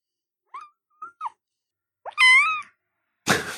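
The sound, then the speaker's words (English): A kitten makes a few soft, brief chirps, then lets out one loud, high-pitched meow, followed by a short burst of rustling noise. “Sorry, we're getting the kitten's opinion on the topic.”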